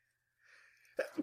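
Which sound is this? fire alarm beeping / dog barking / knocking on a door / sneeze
sneeze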